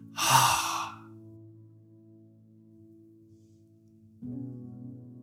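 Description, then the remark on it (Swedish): A single deep, breathy exhalation during a breathing exercise rushes out at the start and fades within a second, leaving a steady low droning tone that swells slightly near the end. “Och sen andas ut.”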